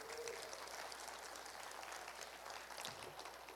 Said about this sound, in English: Clap it up, clap it up.